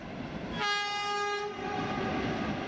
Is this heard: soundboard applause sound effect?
no